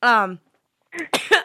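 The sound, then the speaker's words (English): A voiced, strained sound gives way to a short pause, then several harsh, raspy bursts in quick succession, a person having a coughing fit and clearing their throat. “Sorry, I'm having a coughing fit right now.”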